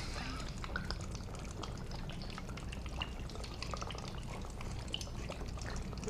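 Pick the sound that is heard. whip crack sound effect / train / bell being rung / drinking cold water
drinking cold water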